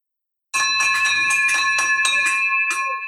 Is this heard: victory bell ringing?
yes